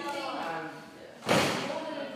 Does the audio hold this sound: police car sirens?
no